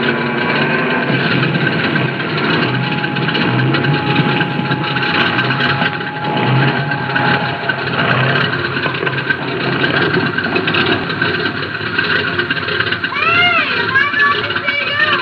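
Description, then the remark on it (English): A small airplane engine drones loudly and steadily throughout, a dense, continuous rumble as the plane lands on a road and idles, with faint voices blending into the noise near the end. “Can you land there, Mason? We're practically down.”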